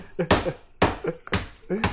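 A meat mallet pounding meat: four heavy, dull thwacks landing at a steady pace about every half second, with faint voice sounds in the gaps between blows.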